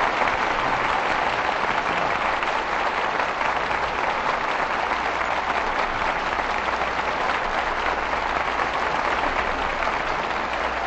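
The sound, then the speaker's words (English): A studio audience applauds steadily and loudly for about eleven seconds, calling stars Bing Crosby and Anne Blythe back for a curtain call, a dense, even wash of clapping hands with no voices rising above it. “Your applause calls tonight's stars back to the footlights.”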